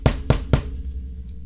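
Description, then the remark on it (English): Three loud, heavy knocks in quick, even succession in a radio studio, each with a deep booming thud that shakes the studio, followed by a low lingering rumble that fades into quiet. No one speaks. “That was a big knock. It shook the whole picture.”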